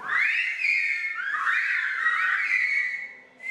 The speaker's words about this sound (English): Even the Silbo master himself has a cell phone with a custom ringtone. See?